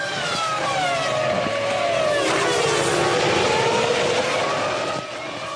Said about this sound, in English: The demented-sounding scream of a Formula One engine racing at 15,000 revs, belching out CO2 on every hairpin bend.